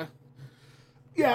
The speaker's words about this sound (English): So you can hear my cough is back.